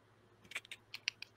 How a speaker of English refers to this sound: As soon as you get back there, as you are getting closer, you start hearing the clicking sounds on the Geiger counter.